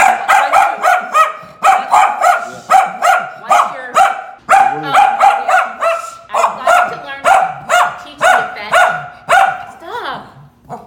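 A dog barks loudly and repeatedly, a rapid string of sharp, insistent barks in an uneven rhythm, ending with a brief whine.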